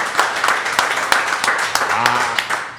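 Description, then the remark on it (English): A crowd applauds Warehouse Liquors in a steady, dense wash of clapping, with a few sharper claps standing out and a brief voice rising underneath near the end. “Please, please, please give a round of applause to Warehouse Liquors”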